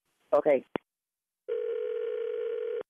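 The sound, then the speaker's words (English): A brief voice and a click, then a second phone ringing as a single steady electronic tone, held for over a second at moderate loudness before cutting off abruptly. “My other phone is ringing, okay?”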